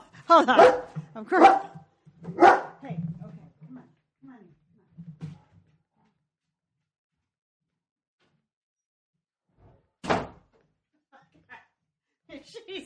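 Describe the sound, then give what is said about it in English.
A female pet dog barks: three loud, sharp barks in quick succession, a long stretch of quiet, then one more bark, with faint muffled sounds in between. “Oh, there's a dog. There's my dog.”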